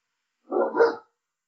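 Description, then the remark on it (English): A dog gives a short double bark, two quick close-together woofs lasting about half a second, with silence before and after. “Well, it's a firm yes from the dog as well.”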